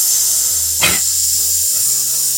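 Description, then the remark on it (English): A steady, airy hiss like air escaping from a leaky tire runs throughout, with a short sharper burst of hissing near the start. No one speaks. “We got a leaky tire.”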